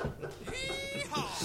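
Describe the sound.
A goat bleats in a drawn-out, wavering cry, followed by a shorter bleat that slides downward. It is fairly loud, with a bit of voice-like murmur underneath.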